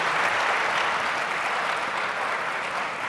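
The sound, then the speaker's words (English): A crowd in Philadelphia claps steadily, a dense wash of applause holding at an even, fairly loud level throughout with no voices standing out. “Oh yeah, give Philly a round of applause.”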